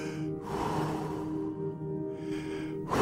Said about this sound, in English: I know now. Just breathing.